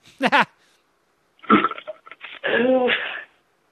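A brief, buzzy fart sound effect from a soundboard pops out, then after a pause a longer, sputtering one stretches out with a wobbling, drawn-out rasp. Both are loud, with no talking.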